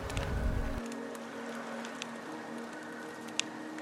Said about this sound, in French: Le bruit des crépitements s'entremêle à celui des vagues et vous apporte un sentiment de sérénité. L'odeur du bois qui brûle se mélange également à celle des effluves marines.